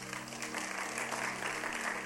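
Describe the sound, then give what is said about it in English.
A crowd claps steadily for a couple of seconds, a dense, even patter of many hands, with a faint low hum underneath. “You didn't clap for me.”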